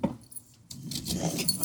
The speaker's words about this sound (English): And then you hear a series of locks unlatch.